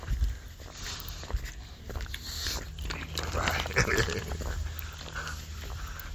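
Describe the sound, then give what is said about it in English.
A dog gives off scattered snuffling, grunting noises over a steady low outdoor rumble, with a brief louder burst near the middle and no talking. “Right. Doggy.”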